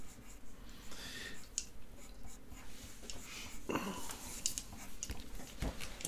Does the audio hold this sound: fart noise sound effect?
no